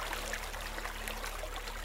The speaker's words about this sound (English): So he went to the edge of a fast-flowing creek and sat down. He took off his hat, dipped his feet in the cool, clear water, and fell asleep.